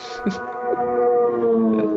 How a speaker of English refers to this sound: That was a loud engine that just went past. I want everyone to know.